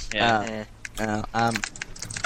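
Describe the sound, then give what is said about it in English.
Quick, light clicks of typing on a computer keyboard patter in an uneven rhythm, partly under a voice making drawn-out vocal sounds, then clearer on their own at the end. “No, I was typing, because people in the chat are telling me...”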